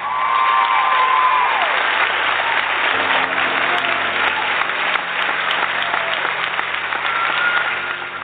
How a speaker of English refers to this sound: The applause, the roar, feels deafening. It reverberates through every molecule of your body.